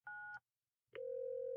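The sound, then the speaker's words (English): A single short telephone keypad beep, then a brief pause before a steady electronic ringing tone begins and holds until the end, as a phone call is placed at 3 a.m. Clear, with no voices. “You're calling her now?”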